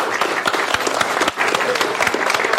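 A crowd breaks into steady applause, dense overlapping claps forming a loud, continuous patter that holds for a few seconds with a brief dip partway through.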